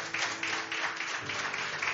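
A crowd gives a round of applause, a dense, steady wash of many hands clapping at once, holding level throughout with no voices standing out.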